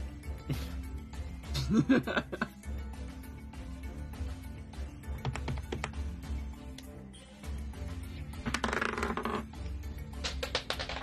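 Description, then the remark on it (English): Dice are dropped and clatter and tap against the floor in a few scattered bursts, with brief laughter and chuckling. “I dropped my dice.”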